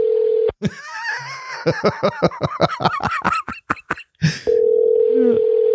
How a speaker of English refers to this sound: Is he calling me back? Answer the phone. I can hear the phone. Oh, we're calling him.